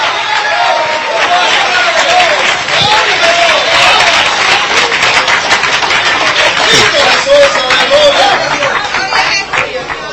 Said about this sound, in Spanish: Qué poquitos aplauden, gloria a Dios.